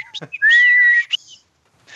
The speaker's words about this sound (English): Teach them to whistle. Only the high notes. Can you whistle? Can you whistle, kid?